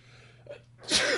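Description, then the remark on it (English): A single sharp sneeze bursts out after a brief, quieter intake of breath, loud and explosive, with nobody talking. “Bless you.”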